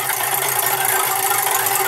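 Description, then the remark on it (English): A spinning joke wheel, used to pick the type of joke, clatters with rapid, continuous ratcheting clicks that blur into a steady, bright rattle, holding an even loudness for two seconds with no voices. “All right, spin the wheel.”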